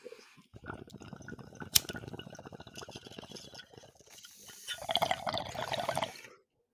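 Rapid, gurgling water bubbling in a bong, a continuous burbling for about six seconds that swells louder toward the end, with a brief sharp click early on.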